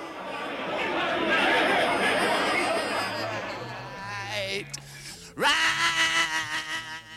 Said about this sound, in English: he only used one of the elements from that backing track, his growling, mumbling, yelling vocal track from the long coda of Take 18, which he would fade in and out of this new recording.